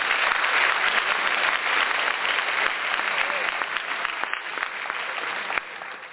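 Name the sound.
round of applause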